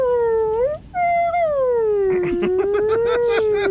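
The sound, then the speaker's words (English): A voice imitates whale cries: long, wavering tones that slide slowly down and up in pitch, briefly breaking once, with scattered bursts of noise during the second half. “… just going to shut up and speak in high-pitched cries for a while.”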